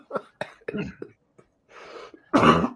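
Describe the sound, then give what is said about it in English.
A single loud cough bursts out near the end, preceded by a few short throaty sounds and a breathy, raspy exhale as the throat clears. “Excuse my cough.”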